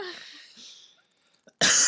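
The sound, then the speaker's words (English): A sharp, loud cough from a person who is not sick but still has a cough bursts out after a stretch of faint breathy rustling and near silence, with no one talking. “Well, you're not sick, but you still have a cough.”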